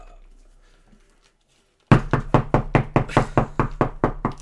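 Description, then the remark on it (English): After a near-silent pause, someone raps on a door in a rapid, steady series of about a dozen loud knocks that continue to the end. “He's gonna just knock on the door.”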